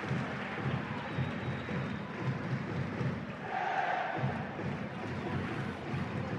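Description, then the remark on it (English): A dense, steady roar from a large football stadium crowd, continuous and fairly loud throughout, with a brief rise of higher cheering or whistling around the middle. “Well, the crowd are still relatively happy.”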